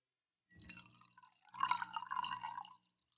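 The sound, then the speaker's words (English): Juggernaut 2017 Cabernet from California glugs and splashes into a glass in two short pours, the second longer with a rising gurgling tone as the glass fills; no one speaks. “We're going to go ahead and pour.”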